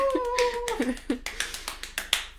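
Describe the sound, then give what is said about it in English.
A short burst of hand clapping, many sharp, irregular claps from a few hands, moderately loud, with a brief sustained vocal tone at the very start. “So a round of applause.”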